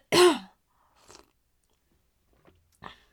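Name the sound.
sipping tea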